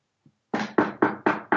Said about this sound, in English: Well, don't jinx it or anything. Knock on some wood.